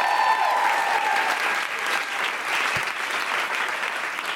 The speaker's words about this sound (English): Round of applause for Susan Wokoma.